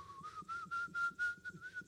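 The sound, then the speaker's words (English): Someone whistles a Christmas carol tune, holding a steady high note with soft rhythmic pulses and breathy puffs, with no talking. “You're whistling.”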